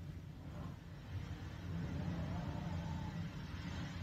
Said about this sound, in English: Oh, listen to that wind. I think this will sound really cool if you get to play like a movie on it or something like that.